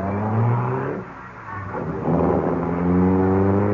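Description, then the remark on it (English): A car engine rumbles loudly, dipping briefly before revving back up with rising, steady harmonic tones. No voices are heard over the engine noise. “Now, get away from my car before I run you down.”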